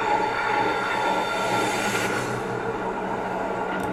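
A train in a video clip rolls steadily along the rails, a loud, continuous rumble with a faint metallic whine riding on top, with no voices.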